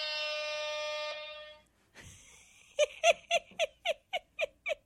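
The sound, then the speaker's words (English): A hype button sound effect: a loud, harmonic horn-like blast holds for over a second, then after a brief sweep, a rapid series of about eight punchy electronic hits pulses in an even rhythm. “He got me what is called a hype button, which does this.”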